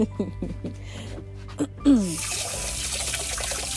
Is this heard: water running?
yes